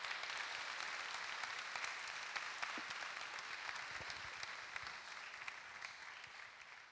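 An audience applauds steadily for several seconds as a family is welcomed up, a dense wash of many hands clapping at once, fairly loud and sustained with no voices over it.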